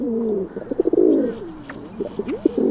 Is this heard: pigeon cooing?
yes